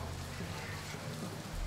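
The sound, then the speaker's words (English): Steady rain falls outdoors on a film shooting location, a dense, even hiss of drops over a low rumbling background, continuous for the whole short stretch, with no voices. “The case with the rain is you look at George, he looks at you.”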